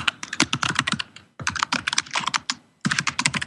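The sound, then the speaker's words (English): Rapid typing on a computer keyboard, a dense stream of sharp clicks in three quick bursts separated by brief pauses, with no voices. “Do you think he's typing his password? Who's typing like crazy?”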